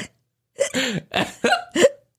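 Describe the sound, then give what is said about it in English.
Four short hiccup-like gulps in a fairly steady rhythm, each a sharp voiced catch. It may be a person imitating hiccups rather than real ones. “I'm picturing hiccups.”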